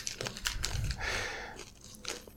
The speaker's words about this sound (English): Not only is the bag super horribly loud, but also you're crunching it in your mouth. Like they're the best for obnoxious people.